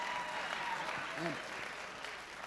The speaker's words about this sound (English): My wife and I have been married for almost 9 years, 9 years in June. And here's the obligatory clap when you mention how many years you and your wife have been married. That's your part.